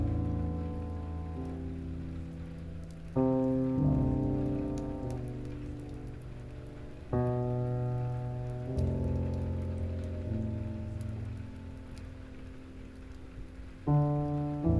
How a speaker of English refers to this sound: Be one with the rain, the comforting, rhythmic healer all around you.